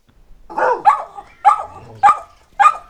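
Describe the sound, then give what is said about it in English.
Two dogs, Crispy and Crunchy, barking in a quick burst of about five sharp, mid-pitched barks, loud and clear with short gaps between them and no talking over them. “I decided while I was there that probably the best thing to do would be to see if I could get Crispy and Crunchy to give us a bit of a shout out, have a bit of, you know, tell the audience how they are feeling.”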